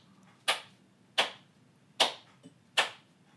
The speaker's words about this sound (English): Will you put in a full round of applause there? Hold on, that was a bit too fast. Let me slow clap.